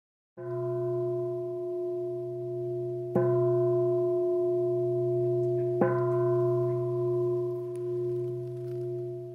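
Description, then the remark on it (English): A meditation bell is struck three times at the end of a meditation session, a few seconds apart. Each strike adds to a steady, ringing hum with several clear overtones that sustains without fading through the whole clip. No one speaks. “Who's ever ringing the bell, please ring it 5 minutes later.”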